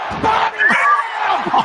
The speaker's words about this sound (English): Body slamming, and the crowd goes.